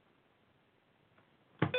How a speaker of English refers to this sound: You know, I'm getting really fucking sick and tired of this goddamn beeping McBeepington laptop.